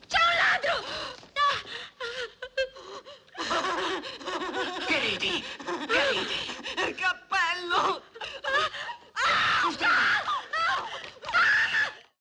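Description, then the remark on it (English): A woman manically half laughs, half screams in loud, frantic bursts with shrill peaks and short breathless gaps, continuing wildly for several seconds. “Of laughing and sort of half laughing and half screaming and just like really manically going fucking berserk.”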